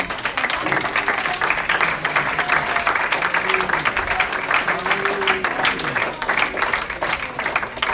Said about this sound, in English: But anyway, you're sure welcome to come and give the Lord a hand clap again.